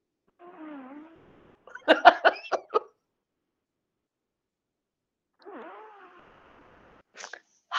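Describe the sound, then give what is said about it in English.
A cat lets out a drawn-out meow, followed by a quick series of sharp, breathy sniffs as a person sniffs the cat's armpit. After a pause the cat meows again and a couple more huffs follow. “Get a nice big huff of a cat armpit.”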